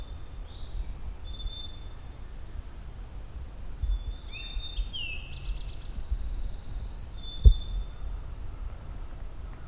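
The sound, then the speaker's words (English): An Eastern Towhee sings its 'drink your tea' song: two short clear notes followed by a quick, buzzy trill, heard over a steady low outdoor rumble with a few faint earlier bird notes. “And the drink your tea of the Eastern Towhee song.”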